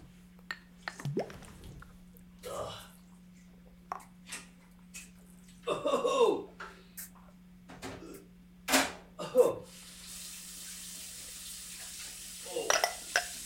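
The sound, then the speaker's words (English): Water splashes and sloshes at a sink in several short irregular bursts, with drips and clatter between them, over a steady low hum, and a broader hiss of running water near the end. “Got a little splash in the splash zone.”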